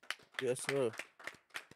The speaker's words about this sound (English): Clap it up one time.